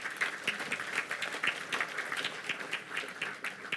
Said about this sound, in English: Yeah, I think the Lord deserves a clap for that.